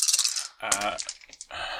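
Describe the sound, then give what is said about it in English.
Dice clatter and rattle across a hard table in quick, bright clicking bursts, fairly loud, with a brief voice murmuring partway through. “You get the blue dice”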